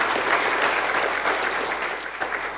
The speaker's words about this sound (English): Can you give God a hand clap of praise for that?